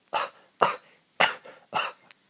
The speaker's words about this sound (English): Oh, my goodness. What a terrible cough.